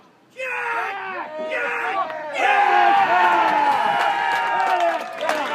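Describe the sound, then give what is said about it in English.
A crowd at a lawn bowls match erupts in loud, sustained cheering and shouting as Josh Tegg bowls, many excited voices overlapping in a dense roar that swells midway and holds without pause. “And I reckon if you by the sound of the crowd, you'll be able to hear how successful he is.”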